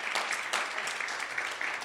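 A church audience claps steadily for the teacher about to lead a Sunday school class, a dense patter of many hands at moderate volume, sustained without breaks and with no one speaking over it.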